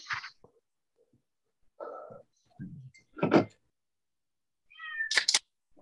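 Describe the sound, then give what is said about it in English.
A cat meows a few times in short, separate calls, with a couple of brief louder cries near the end and quiet gaps between. “So is there a cat out here?”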